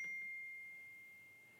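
A single soft electronic ding rings out once and fades slowly, a quiet notification chime with a thin, bright tone over faint background hiss and no voices.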